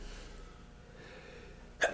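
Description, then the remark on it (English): A single short, sharp sneeze bursts out near the end, loud against an otherwise quiet background hum. “Bless you.”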